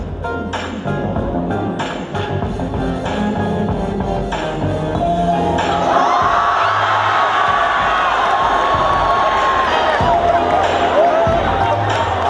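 A loud crowd cheers wildly and steadily for the whole stretch, with shouts, whoops and high screams layered over a dense roar, and a rhythmic thumping like music or stomping underneath.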